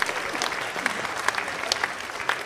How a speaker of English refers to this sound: Let's give them a big round of applause. Welcome to you.